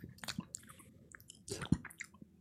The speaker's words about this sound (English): Sniffing on the other end and licks of the phone and that kind of stuff.